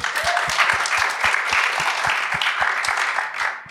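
An audience claps steadily and loudly for a contestant's pitch, dense overlapping hand claps forming a continuous wash of applause, with a regular low thump beating underneath throughout.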